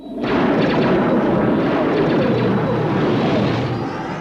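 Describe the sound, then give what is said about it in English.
Giant laser cannons fire on a spaceship approaching Earth in a loud, dense barrage that begins abruptly and roars on without pause, rapid blasts blurring into a continuous rumble, with no voices. “As they get closer to Earth, giant laser cannons begin to fire upon them, so they quickly duck behind the moon.”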